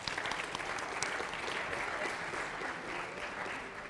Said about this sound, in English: So that was a successful date, so let's give them a round of applause, all right?